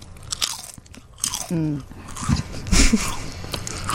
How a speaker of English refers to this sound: This is what a barbecue potato chip sounds like when you chew it on the air. So you guys ready? This is a sample round.